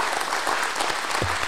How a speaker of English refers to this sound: He is a gold medalist in the Olympic 8 in 2004, multi-Olympian, and now the head coach of UPenn. So please, round of applause for Brian.